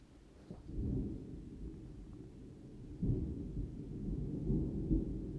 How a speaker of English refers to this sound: First off, we have raging thunderstorms outside my office today. So if you hear that, just know that it just lends to this dramatic ambiance of the topic of spiritual weight loss.